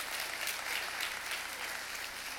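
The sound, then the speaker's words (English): An audience claps for God's word during a church service, with steady, dense clapping that stays fairly loud and even throughout, a continuous wash of many hands with no voices standing out. “And yes, you can clap for God's word.”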